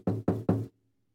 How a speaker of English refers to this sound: No, knock on wood.